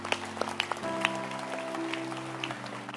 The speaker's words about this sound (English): Everybody stand to your feet and clap your hands for him.